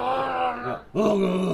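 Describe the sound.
A person imitates a Sasquatch call with two loud, drawn-out groaning howls, the second rising sharply in pitch after a brief gap, voiced and harmonic-rich.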